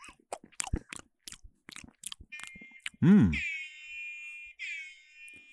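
Pre-recorded wet chewing on Havarti cheese for about three seconds, a rapid run of smacking bites, then a sudden meow-like cry followed by a steady, high electronic beeping tone.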